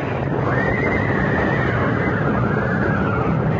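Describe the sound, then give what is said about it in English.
Horses pulling a carriage whinny in panic as the carriage crashes coming off a bridge, a shrill, wavering neigh stretching across several seconds over a dense, loud wash of clattering noise, continuous with no talking. “Coming off the bridge, the lead horse panicked, pulling the whole rig to the right, so that what was coming was inevitable.”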